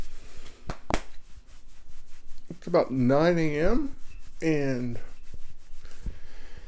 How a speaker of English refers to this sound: It's Sunday morning. And that snorting, sniffing you hear is NASA the dog.